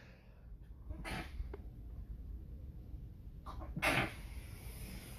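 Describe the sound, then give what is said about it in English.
A sharp sneeze bursts out near the end, preceded by a quick inhale and an earlier smaller snort-like breath, with no talking around it. “Sometimes you sneeze on air, and it's not pretty, but it is what it is.”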